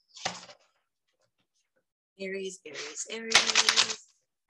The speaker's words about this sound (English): All right, Aries, you're up, my dears. And then we have Taurus. Flipping cards all over the place.